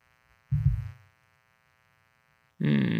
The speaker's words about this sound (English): I'm gonna pause you for like 1 second because there's an extremely loud buzzing.